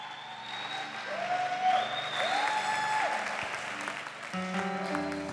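A church audience at a Christmas morning service claps steadily for the speaker's wife and children, a dense, continuous wash of applause that holds at a fairly even loudness throughout, with some faint tonal sounds and brief music-like notes underneath.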